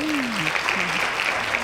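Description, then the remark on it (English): A burst of hand clapping from a small audience at the first annual beer and wing fest, a steady dense patter of claps over the whole moment, with a voice briefly sounding underneath. “Hand claps!”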